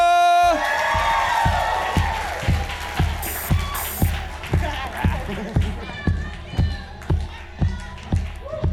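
A live crowd at a poetry event bursts into applause and cheering to welcome the second poet of the final round, loud at first, then the clapping thins into a steady rhythmic beat with scattered whoops and a shrill whistle.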